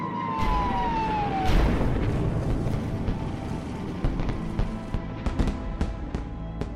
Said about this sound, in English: The night of November the 14th was just an ordinary night as far as Coventry people were concerned. The air raid sirens went off at 20 past seven in the evening. 500 Luftwaffe bombers appeared over the city.